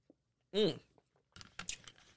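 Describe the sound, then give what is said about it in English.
A brief voiced sound, then a few short, wet sipping noises as a person takes a sip of a drink, uneven and fairly quiet, with no talking over them. “Now, let me get a sip of drink before I get into this.”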